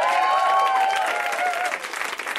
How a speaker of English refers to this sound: Some fucking awesome comics. They're in the back. They can hear you. Clap for them.